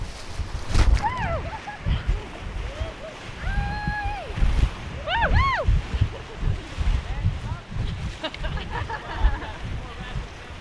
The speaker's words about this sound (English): This stretch of river is known as fern gully, … explains. It's going to be our best rapid of the day.